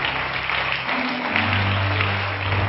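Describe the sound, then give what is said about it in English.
A church audience claps their hands to welcome guests in a dense, steady wash of applause that holds for a few seconds, with a low sustained musical tone humming underneath. “Why don't all of our home folks give our guests a good hand clap today?”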